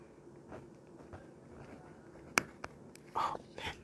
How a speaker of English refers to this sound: Okay, I'll try to write. I'll write my name. You listen. Okay, I'll write with the pencil.